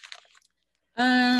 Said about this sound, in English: Are you crumbling paper right now too? No. Oh, okay. Okay. I was crumbling plastic, but I'm no longer.